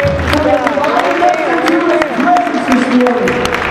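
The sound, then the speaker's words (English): A church audience gives a hand clap of praise to God, clapping steadily for several seconds, sharp hand claps scattered through a dense crowd noise, with voices calling out and shouting over the applause at a constant, fairly loud level. “Come on, somebody give Him a great hand clap of praise.”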